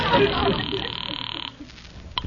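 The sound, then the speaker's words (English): A telephone bell rings loudly for about a second and a half with a rapid, buzzing trill as a caller phones back after hanging up on a bad line, then cuts off abruptly, leaving a brief quiet stretch with a faint click. “I tell you what, you hang up and I'll call you right back.”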